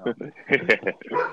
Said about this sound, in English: So the hounds are on the loose. Hey, it's Calvin Johnson wanting to put his word in, you know. Yeah, for our listeners, we named our dog after Calvin Johnson.